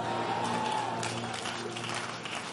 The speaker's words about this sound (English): This is the first time this beautiful girl has clapped for me. She loved this message.